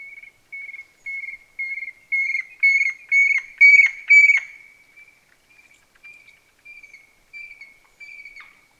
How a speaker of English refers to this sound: This bird was first spotted in Arizona in 1977 when a family group crossed the border into the Chiricahua Mountains. Grab your ID guide and take a look at this magnificent bird as we play their call.